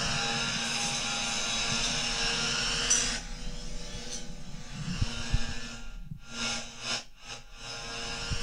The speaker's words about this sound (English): And her outro music is just a leaf blower. Leaf blowers are actually very interesting technology, because what they do is they fucking just blow leaves all over the place.